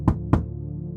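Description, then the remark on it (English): Two firm knocks on a locked bathroom door, about a quarter second apart, each a dull thud with a sharp edge, over a steady low electrical hum. No one speaks. “I knock on the door.”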